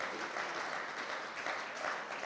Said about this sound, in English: And the worship team did a great job. Do you not think? Come on, give them a wee clap.